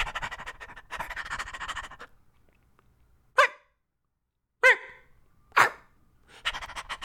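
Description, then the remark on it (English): A person vocally imitates a dog while playing a dog in children's theater at a library, with quick, breathy panting, then three sharp, separate barks spaced about a second apart, and a return to rapid panting, loud. “Yeah, I played a dog at the library for the kids, you know?”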